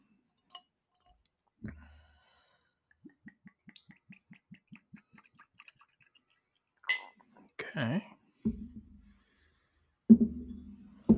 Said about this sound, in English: I'm pouring into like my little, I don't know, my measuring cup thing as I pour it into my glass. Okay, get the ice is already in there.